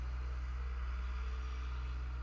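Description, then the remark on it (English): A huge farm tractor with very large tires drives past in Kansas on its way to get hay; its engine gives a deep, steady rumbling drone with strong low harmonics, holding an even loudness throughout with no voices. “That's a huge tractor.”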